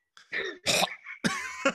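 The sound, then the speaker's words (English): A voice performs a cab driver coughing up blood over his seat: a wet, hacking cough in three quick, rough bursts, fairly loud, with a throaty, gurgling edge as if choking something up. “Coughs up blood over his seat.”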